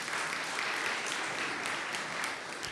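A church crowd applauds a couple steadily, many hands clapping in a dense, continuous patter that stays fairly even in loudness throughout, with no voices standing out.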